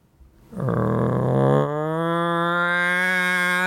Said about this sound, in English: The local town, has an alarm to wake everyone up. That's awesome. Sounds like there's a bomb going off every day at 7 a.m.